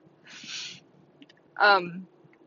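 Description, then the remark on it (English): A single yawn: a breathy drawn-in inhale, a short pause, then a louder voiced groan that slides downward in pitch before trailing off. Nobody speaks. “I'm yawning.”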